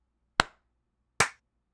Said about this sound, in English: I am also recording audio. Would you like to clap? Yep. 3, 2, 1.